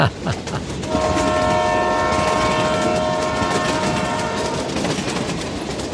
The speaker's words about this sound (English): This is about train whistles. I've been going up since the early 70s, and that train, I think it was Burlington Northern at that time, the whistles always sounded the same, kind of a long,